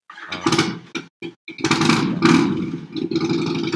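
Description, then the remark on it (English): A motorcycle engine outside revs loudly in uneven bursts as someone sets off, cutting out briefly a few times before a longer sustained roar; no one speaks. “Sorry, someone's got their motorcycle. Someone's on the move.”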